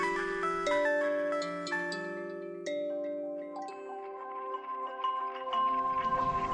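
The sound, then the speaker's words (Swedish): A 1981 automatic mobile telephone, shown in an information film by the state-run Televerket, rings with a melodic sequence of sustained electronic tones, stepping from note to note for several seconds, clear with no talking. “Det ringde just på min mobiltelefon.”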